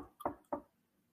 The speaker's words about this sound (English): And all of a sudden, I get a knock on the door.